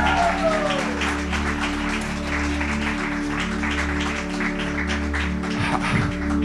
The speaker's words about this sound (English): You guys could give God another strong clap offering of praise.